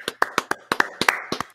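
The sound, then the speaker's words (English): Quick, sharp hand claps by a show co-host welcoming a guest, about ten of them in an uneven, lively rhythm, each a crisp bright smack over a faint steady hum, with no voices. “Get ready to clap,”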